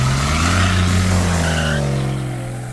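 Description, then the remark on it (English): A car engine roars at high speed, driven at 90 to 110 miles an hour to outrace a tornado on the way to Lawrence, Kansas, while tires squeal loudly, a sustained screech with pitch sliding up and down, intense, fading slightly toward the end. “And then she would step on the gas even harder. 90 miles an hour, 100 miles an hour, 110 miles an hour, and there were cars passing us on the shoulders.”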